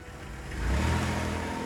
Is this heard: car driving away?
yes